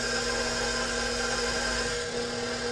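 An electric stand mixer with a paddle attachment runs steadily, mixing 1 cup of starter with oil, a continuous motor whir with a low hum and a thin high whine, holding at an even loudness throughout with no talking.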